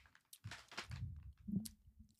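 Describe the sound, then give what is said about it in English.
Crunchy chewing of wasabi almonds, a quick series of crackling bites and grinding chews with no talking, fairly quiet overall. “Crunch, flavor, bingeability. For those guys, the wasabi almonds.”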